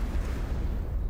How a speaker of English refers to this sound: I'll give that one an explosion.